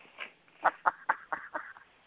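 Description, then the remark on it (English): A mountain goat animal cracker being crunched on Animal Cracker Day: six or seven short, crisp crackling bursts in an uneven chewing rhythm, moderately loud, with no talking over them. “Let's see if you can hear the snap. Did you hear the crunch?”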